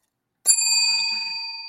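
A single bright bell strike rings out clearly, its pure metallic tone sustaining and slowly fading for over a second before another strike begins right at the end. No one speaks.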